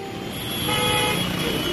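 Dense road traffic fills the scene with a steady rumble while car horns honk and toot over it, a loud, continuous jam of overlapping beeps with no one speaking.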